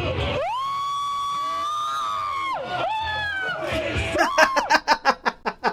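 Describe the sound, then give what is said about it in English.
A man wearing Groot gloves on an amusement park ride lets out two long, loud, high-pitched sustained screams, then breaks into a rapid string of short, choppy yelps. “He just started screaming. He's not having the best time of his life.”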